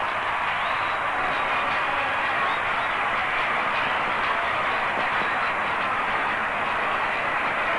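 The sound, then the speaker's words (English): A baseball stadium crowd roars and cheers in a steady, dense wash of noise as Musial comes up to bat in the sixth inning against the Cardinals' opponent, right after pitcher Jim Maloney's ninth strikeout, holding at a strong level throughout with no clear voices standing out. “Listen to the crowd again.”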